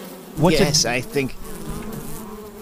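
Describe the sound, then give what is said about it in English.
An insect-like buzzing drone from a person's chest rises and wavers for about a second, then fades into a quieter, steady hum that lingers to the end. “There's a buzzing sound in my chest.”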